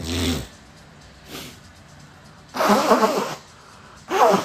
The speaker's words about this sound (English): I got to sneeze, bro.